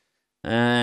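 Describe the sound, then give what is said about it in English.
After a moment of silence, a voice abruptly lets out a loud, sustained, strained yowl that mimics cats fighting, harsh, cut off just as it begins. “I got very little sleep last night because there was a fucking cat fight going on outside the old gaff. They make a hell of a fucking racket, don't they?”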